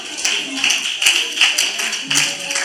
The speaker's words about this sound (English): Do you know why they are clapping? It's a clap out of distrust.